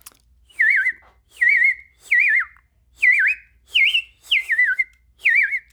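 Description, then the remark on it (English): A person whistles an imitation of a robin's song: seven short, warbling phrases that dip and rise in pitch, each separated by a brief pause, with no talking. “Okay, because that's made me brave enough to try my robin.”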